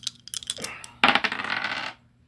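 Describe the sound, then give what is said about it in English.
Dice rolled in a tabletop game clatter and tumble across a hard tabletop, a quick scatter of light clicks followed by a louder burst of rattling that settles after about a second, with no talking. “You want to let her reroll because I hit the other dice?”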